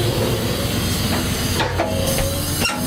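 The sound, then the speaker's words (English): A freight train engine moving off, heard from aboard the engine: a loud, steady low rumble and drone under a wash of broad hiss, with a few brief clanks breaking through near the end. “I'm on the engine.”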